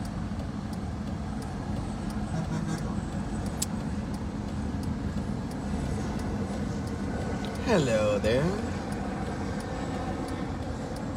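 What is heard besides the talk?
car driving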